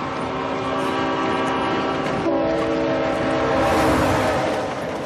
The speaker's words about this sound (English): To get that last little piece with the train coming past McNulty, Dominic actually had to stand on the tracks. I was a little worried we were going to lose our lead actor in the pilot. It wasn't that close, but the train's a big thing